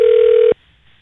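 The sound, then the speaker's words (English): A loud, steady electronic telephone tone from a phone call being placed holds for about half a second, then cuts off abruptly into near silence. No one speaks. “We called you right directly on the podcast thinking you would not pick up and have forgotten about our phone call, but you surprised both of us.”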